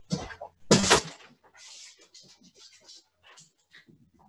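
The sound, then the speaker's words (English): A door opens with a sharp, loud clatter near the start as a person lets a dog out of a room, then quieter scratching, shuffling and soft panting follow from the dog trying to get out, with no one talking. “The dog's in here and he's trying to get out of my room. Let me let him out.”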